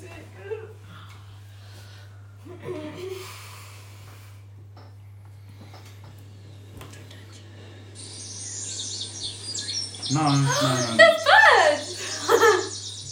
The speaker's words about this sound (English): No. They're birds!